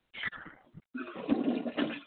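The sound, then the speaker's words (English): A toilet flushes, heard over a phone line during a live Facebook broadcast, a brief rushing burst of water followed by a steadier, louder gurgling swirl that fills the rest of the short clip. “Toilet flush guy got it out of his system.”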